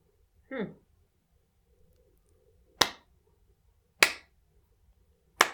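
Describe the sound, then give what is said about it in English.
A short falling vocal sound, then three sharp, slap-like claps made with a nose, each a crisp smack with a quick decay, spaced about a second apart against near silence. “Oh my god, you're clapping with your nose.”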